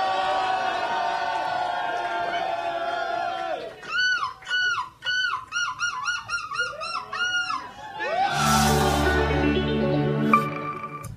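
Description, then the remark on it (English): A man's voice imitates a seagull. He is from Eindhoven and won the European seagull screeching championship in Belgium. He lets out a run of loud, strained screeching cries that rise and fall in pitch, with rapid choppy yelps in the middle and a harsh squawk near the end. “That's the dude in Belgium who just won the seagull screeching contest.”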